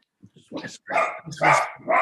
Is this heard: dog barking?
yes